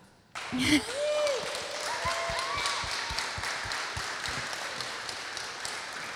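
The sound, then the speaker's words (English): A large crowd, on its feet after a reading of Psalm 100, breaks into sustained applause for God, a dense wash of clapping that starts abruptly and keeps going at a steady level, with a few whistles and scattered voices mixed in. “On your feet now and applaud God.”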